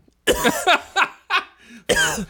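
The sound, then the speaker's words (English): A voice imitates a series of exaggerated tongue-out coughs, about five harsh, breathy bursts in quick, uneven succession, fairly loud with no other sounds around them. “Did you totally love Demi Moore's tongue out coughing?”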